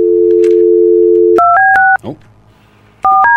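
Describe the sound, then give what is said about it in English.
A steady telephone dial tone breaks into a quick series of DTMF keypad beeps as a number is dialed, with a brief voice murmuring in the gap before more tone pairs sound. “Double check that number.”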